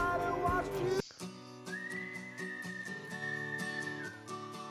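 A whistled soundtrack melody rises and holds long, slightly gliding notes over a steady backing of music, following a brief busier musical passage at the start.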